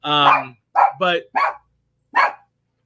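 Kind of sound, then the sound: animal, small dog barking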